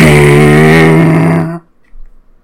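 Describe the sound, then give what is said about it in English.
A person imitates a car engine with their voice: a loud, steady, buzzing vroom drone that holds for about a second and a half, then cuts off abruptly into near silence. “That was a car noise.”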